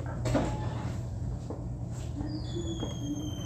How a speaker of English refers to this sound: The sound of those doors is what gets me.